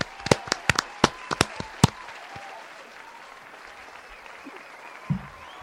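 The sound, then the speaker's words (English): A brief burst of applause: roughly eight sharp, uneven claps crowd into the first two seconds, then the clapping stops and only a faint, quiet background remains. “So give him a round of applause for.”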